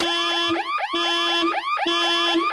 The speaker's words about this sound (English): That's a fairly severe car alarm, I'll give it to you. That is annoying. Car alarms number 2.